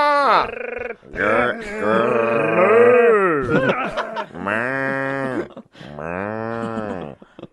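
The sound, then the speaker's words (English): A person imitates a cow, giving three long, drawn-out moos with short breaks between them, loud with a throaty, harmonic tone. “Doing a cow now.”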